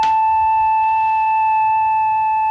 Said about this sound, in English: The simplest one of all is something that any lab technician must have seen at one time or another. It's called a sine wave. It's very smooth, very flute-like.